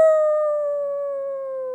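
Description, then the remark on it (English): A person imitates a wolf howl: one long, steady note that slowly slides downward in pitch, sustained for nearly two seconds with no talking around it. “Okay, you just did a howl. It was beautiful, wasn't it?”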